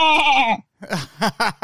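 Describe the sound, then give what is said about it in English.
A person imitates a goat, giving one long wavering bleat, then a pause and a few shorter stuttering bleats, loud with no other sounds. “I got one good impression of an animal, and it's a goat.”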